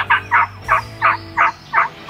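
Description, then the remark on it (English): A wild turkey gobbles in a rapid, rattling series of seven evenly spaced bursts, loud, with no other voices, heard by hunters on a morning turkey hunt after setting out decoys and calling. “we hear a couple birds and we get set up and put out the decoys and start doing a little calling.”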